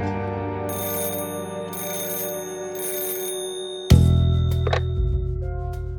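An old-style telephone bell rings in three regular bursts over a steady low hum, signalling an incoming call from someone in Memphis, Tennessee, then a receiver is lifted with a clunk and a short clatter.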